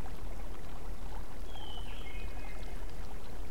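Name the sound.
river water flowing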